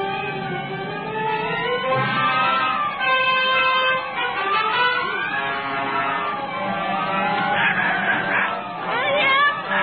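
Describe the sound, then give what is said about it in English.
A flock of chickens squawks and clucks frantically as their chicken roost is carried off through the sky by a cyclone, many overlapping cries rising and falling loudly and nonstop for about ten seconds, with a rushing windstorm underneath. “Through the sky, barns and buggies, and there goes our chicken roost.”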